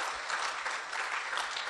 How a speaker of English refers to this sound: Clap for her, clap for her.